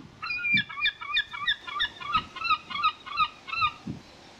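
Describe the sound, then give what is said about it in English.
A seagull squawks over and over in a rapid, steady run of harsh, nasal cries, loud, with no voices around it. “If you've just heard a massive cut and wondered why there was a seagull dirty cut in there, we said something that maybe libelous.”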